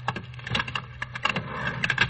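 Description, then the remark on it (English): Elevator door mechanism running in a hotel, a steady stream of rapid clicks and light metallic rattles with a faint low hum beneath, moderately loud and without any voices. “Here's the elevator.”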